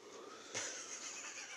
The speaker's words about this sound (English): I was yawning.